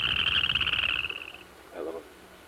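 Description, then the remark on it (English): A Western chorus frog gives a loud, rasping trill of rapid pulses lasting over a second. It fades out, then a brief, softer, lower-pitched call follows. “Now, let's hear the call of the Western Chorus Frog.”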